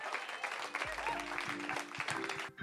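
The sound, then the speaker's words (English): An audience applauds everyone who appeared that night, a dense, steady wash of clapping that lasts the whole moment, with faint murmuring and a low hum underneath. “Please give another large round of applause for everyone that you saw tonight.”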